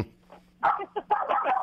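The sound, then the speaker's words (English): A dog barks at its owner, who is on the phone, in a quick run of sharp, fairly loud yaps that come through a thin phone-like line with a faint steady hum beneath. “Anytime he sees me on the phone, he likes to start barking at me.”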